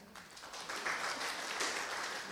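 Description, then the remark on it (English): An audience applauds, a dense wash of many hands clapping at once that holds steady and fairly loud for a couple of seconds, with no voices over it. “No golf club claps in here, please.”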